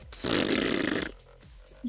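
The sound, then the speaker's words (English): A voice imitates a loud, non-silent fart of a dog named Zink with a single long, rasping, buzzy blast of about a second, followed by quieter breathy sounds and a brief low grunt. “Every one of Zink's farts are.”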